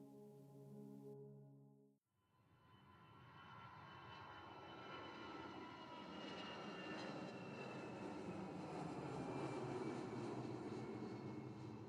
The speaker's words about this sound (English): We had been in the air for over 3 hours with four more to go. I had tried to get some rest during this time, but sleep did not come to me. Instead, I played a game of closing my eyes and letting the hum of the plane's engines knock me out.